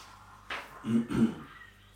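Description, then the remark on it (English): A voice imitates a dragon's heavy, rough panting: a sharp breathy rush followed by two low, throaty huffs in quick succession, moderately loud, with no words. “He goes, heavy dragon panting, and then turns back into human form.”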